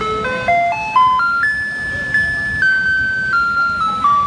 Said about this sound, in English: Okay, do you know what that is? Yeah, I know what that is. It's also the garbage truck, is it not? Yeah, it is. That's right. Okay. So this song is called The Maiden's Prayer.